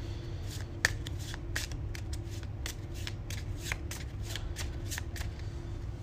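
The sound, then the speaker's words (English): An encounter deck of game cards being shuffled, a rapid series of crisp riffling flicks running steadily for several seconds over a low, constant background hum, with no voices. “I ran out of cards. I had to shuffle my encounter deck if I'm going to do some damage.”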